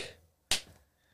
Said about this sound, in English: He's going to get mad one of these days, guys. I'm going to have to put up a sign that says no leg slapping like they have at WWE now.